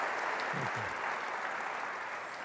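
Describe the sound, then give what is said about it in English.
An audience claps for artists and communicators, a dense, even wash of many hands applauding at a moderate level for a few seconds, with no voices standing out. “The heads are here, but yeah, you can clap for that. We need to clap for the artists and the communicators.”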